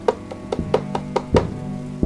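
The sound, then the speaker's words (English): A heavy latch clanks and an iron bolt slides as the door of the Fall Fellow Inn is opened, heard as a quick run of sharp metallic clacks with a ringing undertone, ending in one last thud. No voices. “A heavy latch and the sliding of an iron bolt could be heard as the door opened”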